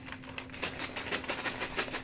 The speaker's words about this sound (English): I only have two left in my bag. See if I can do this without spilling my dice again. The answer is decidedly no.